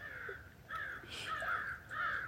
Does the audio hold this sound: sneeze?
no